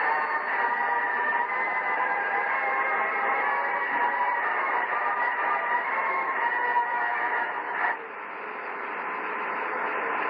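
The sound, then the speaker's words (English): The Air Force song plays from an onboard spacecraft tape recorder, transmitted over the CSM downlink as a thin, hissy radio signal with steady static underneath; the tone shifts abruptly near the end. No one speaks. “They tell us from Houston that music is from Falcon itself, a tape recorder aboard Falcon playing the Air Force song.”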